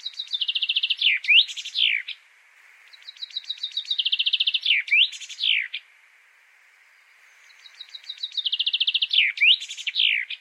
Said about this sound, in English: Normally, when we hear a singing bird, we think about hot summer days. But the one you just heard is associated with winter. Zięba, the finch, is one of very few singing birds spending their winters in Poland, where winters are pretty cold.